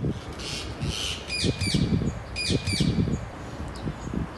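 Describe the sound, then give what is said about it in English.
Large parakeets, about a foot long including the tail feathers and the size of parrots, give harsh, screechy calls in two quick bursts of several notes each over a steady low outdoor rumble. “They don't look like what I would expect a little tiny parakeet would look like, you know, the kind you would find in a little pet shop.”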